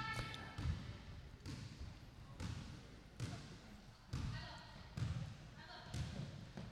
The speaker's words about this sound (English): Hear that? It's a basketball bouncing. That was for atmosphere and a sound effects record I'm recording.